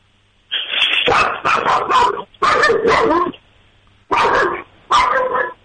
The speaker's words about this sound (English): That's good. That's some good barking. Sorry, so yeah, that's every time the doorbell rings or doorbell rings on TV. That's great. That was some solid barking. Yeah, he's an angry little guy.